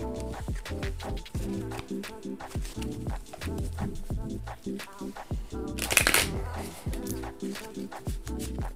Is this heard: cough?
no